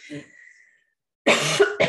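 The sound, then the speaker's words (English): A brief throaty sputter, then silence, followed by a loud burst of harsh coughing that breaks into a second short cough at the end, as a person coughs after a sip of water went down the wrong way. “Sorry, I just took a sip of water.”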